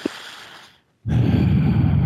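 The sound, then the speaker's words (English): A person panting while describing something: a heavy, breathy exhale rushes in loudly after a short pause, following a softer stretch of breathing, with no talking. “You're describing and you're panting.”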